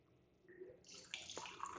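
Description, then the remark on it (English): Champagne being poured into a glass, a fizzy, hissing gush that starts up abruptly and stays bright for a couple of seconds, with no one speaking. “But this cap from the Yellowtail bottle that I kept, you can screw it and so your champagne stays. Woot! Bubbles. And here we go again.”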